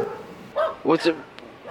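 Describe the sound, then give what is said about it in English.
A dog lets out a few short, sharp barks in quick succession, loud, over a faint background hiss. “So the dog's alive?”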